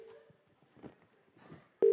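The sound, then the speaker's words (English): A telephone ringback tone sounds through a call line, a steady low tone fading out at the start, then cutting back in loudly at the end, with faint muffled rustling in between. “It's ringing, it's ringing, it's ringing.”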